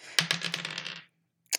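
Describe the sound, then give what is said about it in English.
Dice clatter across a hard tabletop in a quick burst of bright clicks that tumble and fade over about a second, followed by one last sharp tap after a brief pause, as a player rolls for a perception check in a tabletop game. “Which dice is going to do me best today?”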